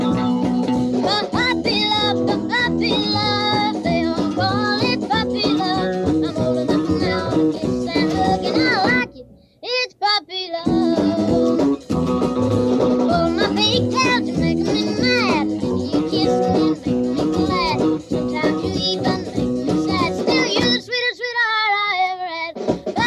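An old-timey 1950s song recording plays: a young, high singing voice over a bouncy band with steady rhythm, loud throughout, with a brief pause near the middle before the music resumes.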